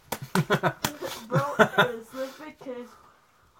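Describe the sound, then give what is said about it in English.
A rapid series of sharp slaps on a toy shark, about six smacks in the first couple of seconds, mixed with chuckling laughter and someone talking. “I think I'm slapping him around too much.”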